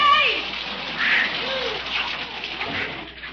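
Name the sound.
water spraying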